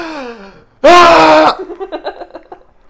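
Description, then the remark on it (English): A voice trails off, then a sudden loud, sharp gasping intake of breath follows, with short rhythmic breathy pulses after it. Someone is vocally imitating the gasp. “I'm literally screaming, thinking, and then I just like, I run out of breath and go to breathe in, not even thinking about it.”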